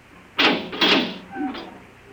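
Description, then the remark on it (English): A door opens: two sharp, scraping bursts of noise, then a short creaking squeal as it swings, fading into quiet. “Open the door.”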